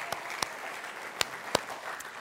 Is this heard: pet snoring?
no